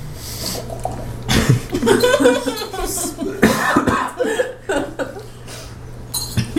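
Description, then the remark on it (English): Water without ice sloshes and glugs inside a drinking bottle in a run of irregular, gurgling bursts, moderately loud, with short pauses between the splashy pulses. “It's just the water making that noise?”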